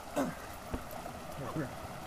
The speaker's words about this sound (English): Oh, waterfall.